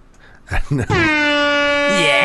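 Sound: air horn sound effect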